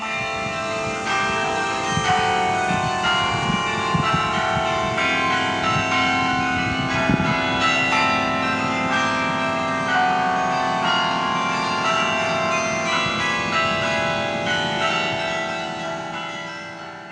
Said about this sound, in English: after seeing a medieval stone tower in France, he had a similar structure built at a crucial spot in the garden and installed the largest available chimes to play concerts from the tower. I heard the carillon play when I visited recently.